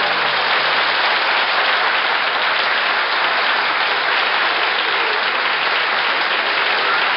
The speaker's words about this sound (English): Thank you. No, please. No, I'll have none of that. No applause, please. No applause.